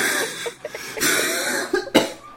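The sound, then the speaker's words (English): Two raspy coughs, the first drawn out and rough, the second a short sharp burst, with no talking around them. “Sorry, I'm still kind of recovering from a cough.”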